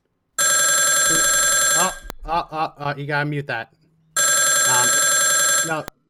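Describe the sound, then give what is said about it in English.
A telephone rings loudly in two long bursts from an incoming call, each lasting over a second, and a man speaks briefly in the pause between them. “Producer, you gotta mute that ringing.”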